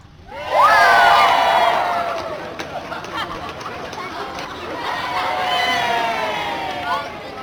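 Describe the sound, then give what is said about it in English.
A crowd of many voices, including high children's voices, counts down and erupts into loud cheering and shouting, eases off briefly, then swells again into another sustained round of excited yelling. “There's some counting, there's some cheering.”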